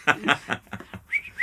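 Someone whistles two short, clear rising notes right after a few breathy, snicker-like bursts of sound. No words are spoken.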